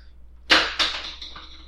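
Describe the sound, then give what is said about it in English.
A door opens and something gets knocked over: a sharp clattering bang, a second crash right after, then a few lighter rattles fading out, with no voices. “And the door opens, and she knocks something down.”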